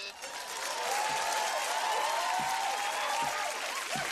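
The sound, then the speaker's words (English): A studio audience claps steadily and fairly loudly for the whole stretch as Woody Harrelson, playing Mickey, shows up at the door. A dense wash of applause with a few voices and whoops rising through it. “And then Woody Harrelson, who plays Mickey, shows up at the door and they're clapping and all that.”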